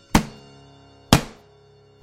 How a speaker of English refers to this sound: More knocking.